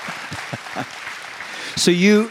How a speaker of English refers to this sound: So, clap, clap, clap, clap.